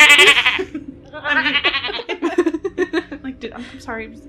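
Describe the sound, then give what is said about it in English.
A man imitates a goat with a loud, quavering bleat, then a second wavering bleat, followed by choppy chuckling vocal sounds. “Or maybe he bleats like a goat when he's nervous.”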